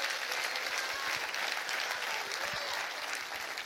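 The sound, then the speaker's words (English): An audience claps hands during a sermon in a steady, dense wash of applause lasting a few seconds, many overlapping claps blending into a continuous crackling roar at even loudness. “Would you clap your hands for that?”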